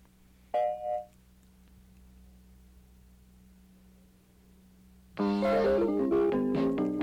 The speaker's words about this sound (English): All right, so I'll give you the chime. Go for it.